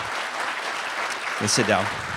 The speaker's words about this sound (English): So if you give them a round of applause, have a seat.